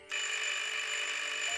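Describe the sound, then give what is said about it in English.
The doorbell of the Eldridge house rings with a bright, steady, bell-like tone that starts abruptly and holds evenly for about a second and a half, with no voices. “Lofton at her word and hopped out with her suitcase, making the long trek to ring the Eldridge's bell.”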